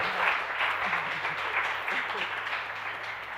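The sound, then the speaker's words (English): An audience claps steadily for a few seconds after a letter is read aloud, a dense, crackling patter that stays fairly even in loudness, with faint murmuring voices underneath. “You can clap if you want.”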